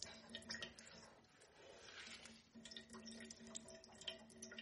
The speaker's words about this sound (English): See, that's just water dripping. I'm not even squeezing. That's water dripping from the spinach.